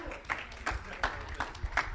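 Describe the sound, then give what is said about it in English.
An audience claps along in a steady, even rhythm, about five sharp claps spaced evenly over two seconds, giving a round of applause to the household's shepherd as he comes up, with a faint background murmur underneath. “So if you could just give a round of applause to the shepherd of this household”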